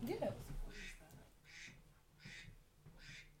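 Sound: ducks quacking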